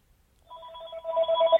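A telephone rings with a steady electronic tone, starting about half a second in and growing slightly louder, heard alone with no talking.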